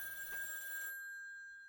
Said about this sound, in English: Yeah, guys, I'm hearing a phone ringing somewhere. Just wait a sec. I got to take this.